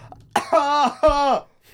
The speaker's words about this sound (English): I'm about to die of coughing during this episode.